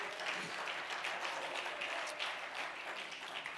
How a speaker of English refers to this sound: Come on, clap your hands and praise God.